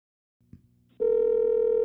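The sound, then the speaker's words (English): A quiet click and faint hum, then a loud, steady telephone dial tone starts abruptly and drones on unbroken to the end, clear with no talking, as a phone is redialed to get a caller back on the line. “Got to try to get acid back on the phone.”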